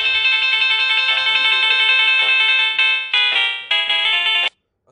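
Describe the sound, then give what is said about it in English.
A phone ringtone rings loudly, a bright repeating electronic melody lasting about four and a half seconds before cutting off abruptly into silence. “It's your phone, man.”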